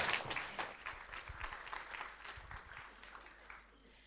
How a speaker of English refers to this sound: Let's give her a round of applause, everyone.